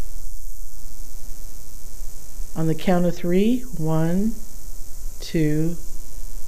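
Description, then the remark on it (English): A steady electrical buzz and hiss of static, heard in headphones while recording at the Point Sur lighthouse, runs the full length, constant and fairly loud, with a man's brief spoken phrase partway through layered on top of it. “Would you mind stopping the static?”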